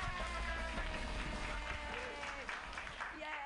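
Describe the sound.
A comedy show audience claps steadily for a female comedian while voices cheer and shout over the noise, a dense, continuous wash of applause lasting several seconds at moderate loudness.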